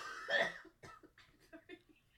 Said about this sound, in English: That was really a bad time to have a cough attack.